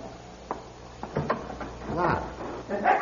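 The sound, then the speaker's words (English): The handle of a locked church belfry door is tried and rattled against the lock, a few sharp metallic clicks and clunks in quick succession, with a faint voice-like murmur toward the end. “He can't be, though, because the door's locked. I think it's locked.”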